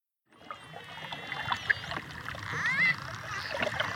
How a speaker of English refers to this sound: We leave you this week splashing in the waves in the Caribbean Sea. This is a noisy pod of dolphins, diving and calling to each other off the coast of Punta Allen in Mexico's Yucatan.